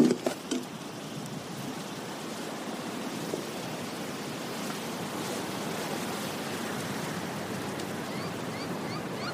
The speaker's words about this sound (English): Goddamn wind.